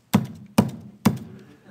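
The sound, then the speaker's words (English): Three firm knocks on a wooden house door, evenly spaced about half a second apart, each a sharp hollow thud with a brief resonant ring, heard alone with no talking; knocking again a little louder after nobody answered. “You knock again a little louder.”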